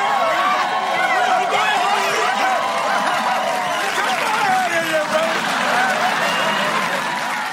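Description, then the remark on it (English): A family jumping up and down, cheering loudly and excitedly because a network wants to put a show on prime time; several voices shouting and whooping over one another in a continuous, energetic burst that lasts throughout, with some clapping-like clatter mixed in. “I love when they're jumping up and down cheering about this, and then Al pushes Bud away as, get out of here, you whatever.”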